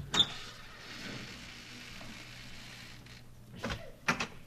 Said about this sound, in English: here we are, the Van Schuler estate. Come on, we'll go in through the front door. I'll open it.